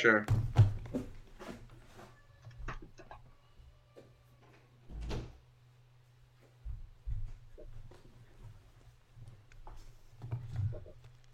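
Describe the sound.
A door is handled and shut, with a cluster of knocking thuds at the start and another solid thump midway, over a steady low hum and faint, indistinct background voices.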